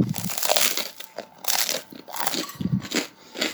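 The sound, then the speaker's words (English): Loud crunching as someone bites into a crusty garlic baguette, with repeated crisp, crackly bursts of chewing spread across a few seconds and no talking. “You can probably tell, but it's got really good crunch to that.”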